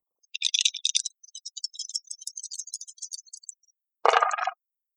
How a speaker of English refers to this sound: Okay, so you're going to roll me 4 dice. I need to see a roll of 15.